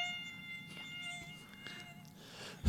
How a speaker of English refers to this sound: Must be those stupid mosquitoes getting in here. Are you hearing mosquitoes?